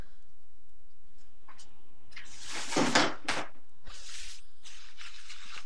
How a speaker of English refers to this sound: I hate the sound of crinkling plastic bags.